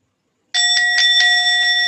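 A bell starts ringing abruptly and keeps going loud, its bright sustained tone pulsing with rapid, regular strikes, with no voices present.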